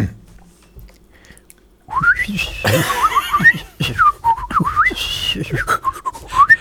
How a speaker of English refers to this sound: Then start your whistle, which no women can resist.